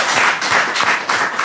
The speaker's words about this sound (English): Very good. Yes, and a round of applause.